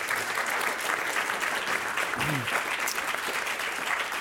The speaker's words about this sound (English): All right, that's the end of our lightning round. Let's give them a round of applause for getting through that.